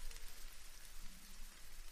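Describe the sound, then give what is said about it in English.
A sizzle sound effect: a steady crackling sizzle, like food frying in a hot pan, hisses continuously for about two seconds with dense popping texture and no voices. “I want to cut you off now because I have a hot take and, you know, cue the sizzle.”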